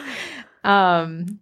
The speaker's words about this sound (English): Why are you gasping in there?